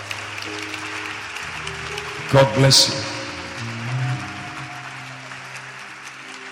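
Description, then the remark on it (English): An audience claps steadily for people as they come forward for prayer, a continuous wash of applause with a man's voice briefly speaking over it near the middle. “Clap for them as they come.”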